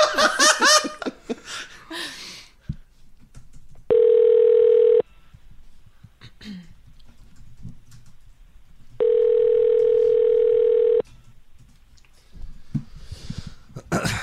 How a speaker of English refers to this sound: I'm calling him right now. Let's see.